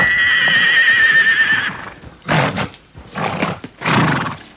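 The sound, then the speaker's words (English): A horse gives a loud, high, wavering neigh lasting over a second, followed by three short, heavy, noisy bursts like snorts or stamping hooves, with no one talking. “So he brings these horses into a round yard, and that horse is absolutely terrified of a human being.”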